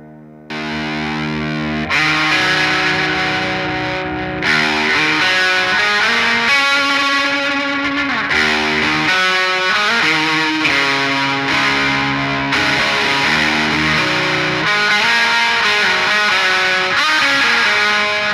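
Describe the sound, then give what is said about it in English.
A heavily distorted, fuzzy electric guitar plays sustained notes and shifting chords through a Strymon Volante delay pedal and a Fuzz Lord Drone Master distortion, the delay smearing and repeating the tones into a thick, droning wash. Loud and steady, no voices. “That was so that's the Volante Strymon pedal along with this Fuzz Lord Drone Master, which I like too as a distortion.”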